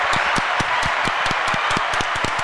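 A short burst of applause for someone's birthday: a dense wash of hands clapping, with sharper individual claps popping out of the steady noise at a quick, uneven rhythm, fairly loud and with no one talking.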